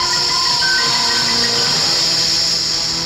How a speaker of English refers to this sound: Touch your skin. It's scaled. Look for your legs. They're gone. Feel your body. It's cold. And listen for the hissing.